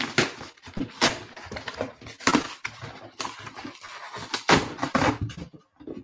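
A cardboard box is handled and opened, with scraping rustles, flap sounds and several sharp papery thumps in an irregular rhythm, fairly loud with no voices.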